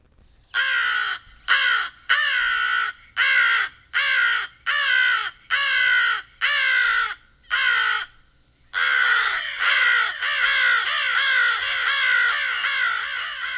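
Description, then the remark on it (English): American crows caw loudly: a run of about nine harsh, evenly spaced caws, then several birds overlapping in a continuous noisy chorus of cawing. “And that crow I would really describe as just a caw.”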